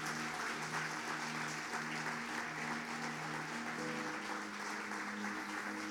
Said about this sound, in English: Come on, let's give the Lord a big clap. Amen. Amen.